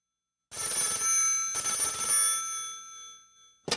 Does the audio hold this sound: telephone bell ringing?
yes